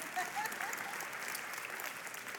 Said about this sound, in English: That's pretty cool. You can clap at that.